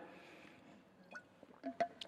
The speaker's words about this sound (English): Let's grab some water here.